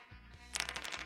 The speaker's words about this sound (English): we allow him to roll the dice